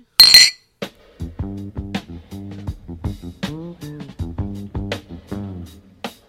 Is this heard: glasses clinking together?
yes